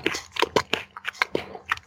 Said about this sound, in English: Sounds like a dog's eating its lunch. What is that sound? Sorry, that's me, but that's the last bite of nuts. Nuts. Trying to get it. It's like my mom's dog eating its kibble.